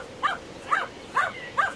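A dog barks four times in a steady, evenly spaced rhythm, each short, sharp bark standing out clearly against a quiet background with no one talking.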